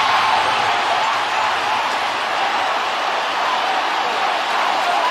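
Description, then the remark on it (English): A huge stadium crowd at a World Baseball Classic quarterfinal roars in a dense, sustained wall of cheering after Rosarena's fly ball to the left-field wall is caught, holding steady and loud for several seconds, with no single voice standing out. “How about that Randy pop from the crowd?”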